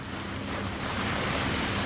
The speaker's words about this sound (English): that's not the sound of the water at the back of the boat I'm on. That's one of the whirlpools, spinning around and around and around.